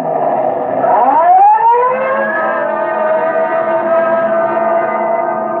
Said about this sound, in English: Code 3, red light and siren. Come on, Friday, let's roll.